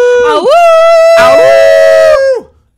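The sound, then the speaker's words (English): A person imitates a coyote howl: one loud, drawn-out wavering cry that dips, swells into a strained middle section, then trails off, with no talking around it. “That's good. You're getting it. It's pretty good. Yeah. Good yeah, so please. Go Coyotes.”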